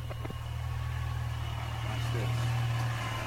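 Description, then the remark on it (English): A car fitted with a twin turbo engine, in Dubai, idles with a steady, deep rumble that holds fairly loud for a few seconds, swelling slightly toward the end with a faint turbo-like whine above it. “When I sent you your car, I added a twin turbo engine to your joint.”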